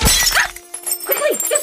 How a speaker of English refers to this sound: At that moment, Alvara grabs your wrist and yanks you away from the telescope as a crossbow bolt is fired and shatters the lens you were just looking through.